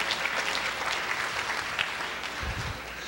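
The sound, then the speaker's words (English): Steady audience applause fills the whole stretch, a dense crackle of many hands clapping at a constant moderate loudness with no pauses or voices rising above it. “Now, I'd just like for you to give the beaver an applause because that was pretty good.”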